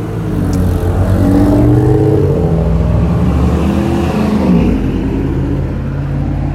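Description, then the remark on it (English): Loud, rumbling exhausts of a couple of Los Angeles cars with faulty exhausts roar past, engines revving with a rough, throaty growl that stays strong for several seconds before easing slightly. “couple typical Los Angeles cars that have problems with their exhaust.”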